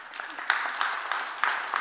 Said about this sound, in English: Whee! Let's give him a clap. That's amazing.